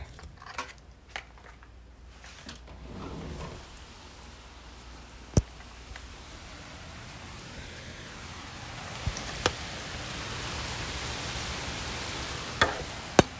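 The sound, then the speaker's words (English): Steady rain in Florida, heard from a room through a door opened to the outside, hisses softly at first, then swells louder and fuller partway through, with a few sharp isolated taps and clicks over the continuous wash of falling water. “It's raining outside. Let me open this door real quick so you guys can hear this rain.”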